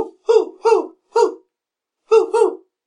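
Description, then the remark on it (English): A person imitates an owl with five short voiced hoots, three evenly spaced, then a pause and two more close together. The hoots are clear, with no other talking. “Now you're doing an owl.”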